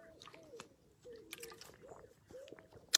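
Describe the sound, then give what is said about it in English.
Someone takes several close, quiet gulps from a water bottle, with soft liquid sloshing and swallowing sounds in an uneven rhythm, ending on a brief sharp click. “Need a drink. As my breakfast went down the wrong way.”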